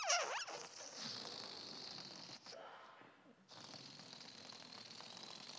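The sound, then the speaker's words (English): A voice imitates air escaping a balloon: a long, buzzy, sputtering hiss with a bright high edge, briefly dropping out midway before resuming steadily to the end. “I was trying to figure a way that that wouldn't sound like raspberries, but but that's the thing, to let the air out.”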